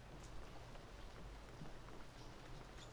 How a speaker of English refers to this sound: Anyway, I'd better get moving. It's starting to rain.